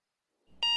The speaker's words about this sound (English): The alarm blared angrily at 6 a.m., but I hit the snooze button more times than I should have.